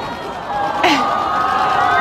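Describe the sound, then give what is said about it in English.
A large crowd in Melbourne lets out a sustained, collective "aww" as Prince Harry hugs a teenage fan during his Australian tour with Meghan, Duchess of Sussex: a dense wash of many voices holding a soft, rising-and-falling tone, with a brief brighter swell partway through. “And a collective awe from the crowd.”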